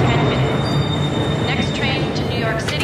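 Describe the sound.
A train rushes past a station platform with a loud, steady roar and a thin high-pitched whine running through it, while a muffled voice sits faintly beneath the noise.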